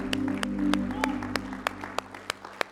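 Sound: audience applauding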